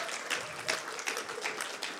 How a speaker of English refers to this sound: Yes, we can give her another round of applause. She's awesome.